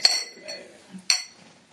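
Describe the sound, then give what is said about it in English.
Glasses clink together in a toast for the next day, two bright, ringing taps about a second apart, fairly loud, with only faint background noise between them. “Tonight, we get to just cheers for tomorrow and hope for a good, hard effort across the board.”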